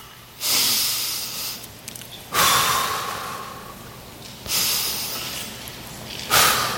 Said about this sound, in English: And just that act of breathing allows your body to slow down and to better deal with the feelings that you've got going on.